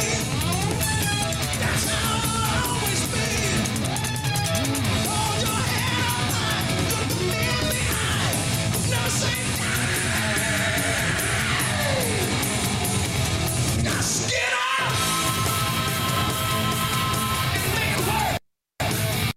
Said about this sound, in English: Just as a vocal aside here, it's one thing to scream. It's another to do a scream that actually, you know, fits the key of the mm-hmm. song that you're mm-hmm. singing. And if you're really good, screaming on pitch is very difficult.